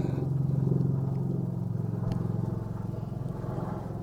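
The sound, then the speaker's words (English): A loud, steady engine rumble drones low for several seconds, with a throbbing, pulsing texture, like an aircraft passing overhead right by an airport. No voices are heard. “We're right by the fucking airport, and apparently there's a fucking UFO coming over our head loud as fuck.”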